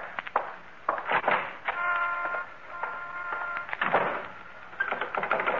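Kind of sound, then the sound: household object, front door being locked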